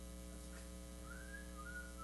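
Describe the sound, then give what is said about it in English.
A short whistled TV theme tune, a few smooth sliding notes in the second half, fairly faint, over a steady low electrical hum with no talking. “We ought to all whistle that together.”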